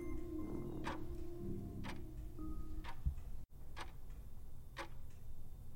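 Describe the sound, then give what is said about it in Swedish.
A hall clock ticks slowly and steadily, each tick a sharp, hollow click roughly once a second, echoing off the walls, with a low steady hum underneath and no voices. “Klockan i hallen tickar. Ljudet låter ihåligt, studsar längs väggarna.”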